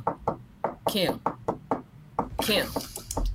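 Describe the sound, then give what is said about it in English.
A series of sharp, fairly loud knocks, acted out as knocking on a hotel room door after a show, in an uneven rhythm, with brief bursts of someone's voice breaking in between the raps. “Knock on my door after a show. Knock on my door.”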